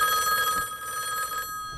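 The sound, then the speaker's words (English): A 1990s telephone rings with a bright, warbling electronic trill, loud, sounding for about a second and a half before cutting off into near silence. No one speaks. “Oh man, my really cool 90s phone.”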